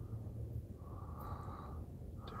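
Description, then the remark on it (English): Heavy breathing rasps straight into a microphone, a continuous rough, noisy huff with low rumbling distortion, steady and fairly loud throughout with no talking. “He's just breathing heavily into this shit, dude.”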